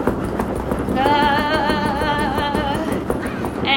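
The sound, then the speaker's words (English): Repeated heavy thuds of people stamping and stomping their feet on a floor and moving their arms in a mock temper tantrum, a busy, uneven patter of many footfalls, with a sustained wavering vocal tone rising over the middle of it. “I'm going to ask you to have a little bit of a temper tantrum, and I'm going to have you stamp your feet and stomp your feet and move your arms.”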